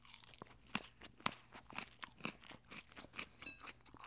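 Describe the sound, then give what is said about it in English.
Crisp, crunchy chewing of a mouthful of salad: about a dozen sharp crackly crunches in an uneven rhythm, the first few loudest, with no talking over them. “After this bite, I'll elaborate.”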